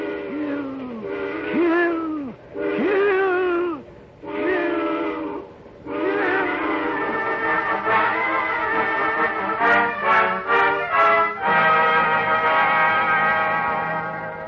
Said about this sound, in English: And then, as the eerie shriek of the train whistle suddenly blasts into his ears, a new thought is wedded to it.